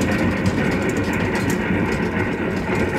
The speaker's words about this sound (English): downbound train. That's Dale Creek Bridge up ahead there.